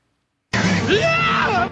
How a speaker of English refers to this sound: the scream sounds a lot like Lando's scream when the Sarlacc tentacle wraps around his ankle in Return of the Jedi.